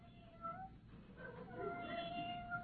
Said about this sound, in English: Huh. Sounds like a little kitten at the screen door. Let me turn on the outside light. Oh, McGee, look, a little kitten trying to get in the back door. Oh, this is the end. McGee, it's a Persian. It's wearing a blue ribbon.